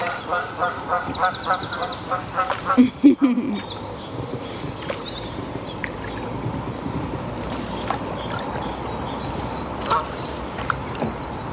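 A goose flying up a river in the morning, calling for its mate, honks in a burst of repeated, harsh calls early on, then fades into steady water and boat noise with only occasional faint calls.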